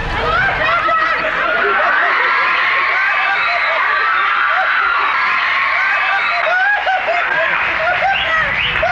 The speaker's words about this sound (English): I mean, holy hell! Scott Baio wishes he had that kind of ovation in this day and age. Was he really that popular back then?